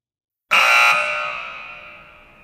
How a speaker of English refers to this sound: That buzzer indicates the end of this episode of Settlers Corner.